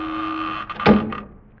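A door swings shut with a single solid thud, closed by a black-bearded man holding a revolver, preceded by a brief creak or rattle, over a steady low mechanical hum. No one speaks.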